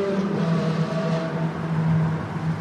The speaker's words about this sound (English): He's got one more rev in him before we get out of this tunnel. Of course, he's got this car in front of him that's holding up traffic. It's a fairly endless tunnel.